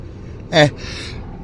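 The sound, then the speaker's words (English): A single short sneeze: a quick voiced burst followed by a softer, breathy hiss that trails off, standing out clearly against low background noise. “I usually sneeze in threes. I don't think I've sneezed yet during my podcast.”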